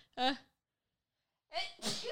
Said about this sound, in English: I am about to sneeze also.